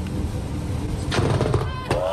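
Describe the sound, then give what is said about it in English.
Lightning strikes the car in front of a driver, filmed on a hand-held phone: a sudden, loud explosive crack, followed moments later by a second sharp burst, all over a steady roar of background noise. “The car in front of him gets struck by lightning.”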